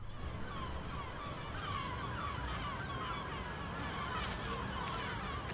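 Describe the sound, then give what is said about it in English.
Birds call repeatedly, crow-like, partly buried in a steady, noisy outdoor rumble that lasts throughout. “I'm not good with heights. Come on. Oh! Or birds.”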